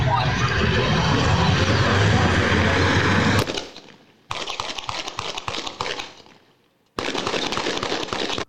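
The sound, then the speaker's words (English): Gunshots played back from a video of a man firing toward a store across the street: harsh, crackling pops fired in rapid succession, opening with a dense noisy clatter, then two loud volleys separated by brief silent gaps. “I think he's shooting at somebody at that store way across the street over there.”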